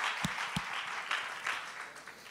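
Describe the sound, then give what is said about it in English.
A church audience claps steadily as a hand clap of praise to the Lord while being seated, producing a dense, sustained wash of applause with a few sharper individual claps standing out early on, and no voices over it. “If that's your prayer today, give the Lord a hand clap of praise as you are seated.”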